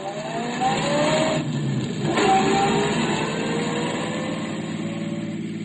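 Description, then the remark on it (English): A car engine runs steadily throughout a ride along Markham Road, its hum rising in pitch as the vehicle accelerates, then settling into a continuous drone with road noise and no voices. “We rode in silence for a couple of minutes, then... Turn left at the next corner. 60,000 cars in a street”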